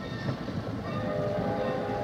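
A train rumbles past with a steady, heavy roar, and its horn comes in partway through, holding a long sustained blast over the noise until the end.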